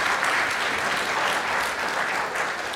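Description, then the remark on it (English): A Millington audience applauds steadily in welcome for a speaker, a dense, continuous wash of many hands clapping at an even loudness throughout, with no voices rising above it. “Please join me in a warm Millington welcome”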